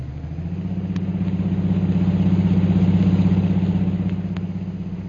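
A car engine runs steadily as a driver takes the vehicle to headquarters, a low, throbbing hum that swells gradually louder through the middle and eases off toward the end, with no voices.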